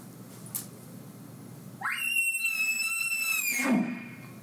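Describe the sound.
A person imitates an elk's challenge bugle, screamed fast and high-pitched with aggression: a quick rising squeal that holds as a shrill, piercing whistle for about two seconds, then breaks into a low grunting drop, alone.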